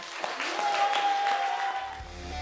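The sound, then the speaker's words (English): A church audience claps steadily and loudly while voices shout and cheer over it, a clap offering and shout of victory to Jesus, a sustained wash of applause with a thin, steady whistle-like tone running through the middle. “So right now, let's offer Jesus our clap offering and our shout of victory.”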